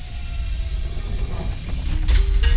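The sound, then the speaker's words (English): A mechanical clunking and ratcheting as all the doors of an escape room lock, with a low rumble underneath and a sharper metallic shift toward the end, no voices present. “That sound means all the doors have been locked, and you will have to locate all the clues, as well as the key to escape, and receive your prize.”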